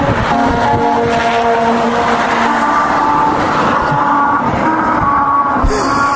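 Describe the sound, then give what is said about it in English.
Car tires drone over musical rumble strips on a road, giving a steady, buzzy run of pitched tones over the continuous roar of a passing vehicle. The tones shift from note to note, loud, with no talking. “The tune is created when car tires drive over the strips”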